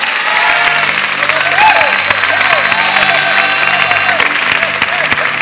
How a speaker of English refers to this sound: Get ready, get ready, get ready, get ready. Clap your hands and receive this word.